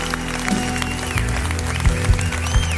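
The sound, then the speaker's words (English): A church audience clapping loudly and steadily, a dense continuous patter of many hands, with low sustained musical tones humming underneath and a few heavier thumps toward the end. “Come on, clap real loud.”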